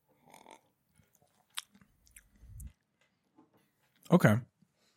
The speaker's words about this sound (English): Cheers. Yeah. After this sip.